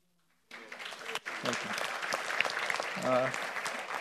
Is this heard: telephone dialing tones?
no